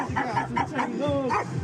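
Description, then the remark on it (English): Rapid, repeated barking at a gathering with karaoke singing: a quick string of loud, yelping barks, roughly five or six in a row with barely a pause between them. “A lot of barking, a lot of singing on the karaoke.”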